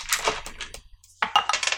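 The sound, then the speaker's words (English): Dice clatter and tumble across a hard surface in two bursts of quick, bright clicks and rattles, separated by a brief pause, with no voices; the roll is to hit a door in a game. “Hold on, I have to roll for it.”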